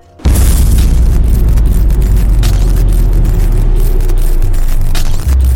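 A loud explosion bursts in abruptly and rolls on as a heavy, sustained roar with deep rumbling and scattered crackles for several seconds, overwhelming, with no voices.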